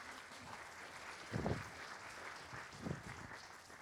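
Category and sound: crowd, audience applauding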